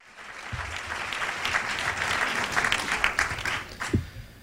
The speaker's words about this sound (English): Applause for Matt Drudge in Washington at the press club.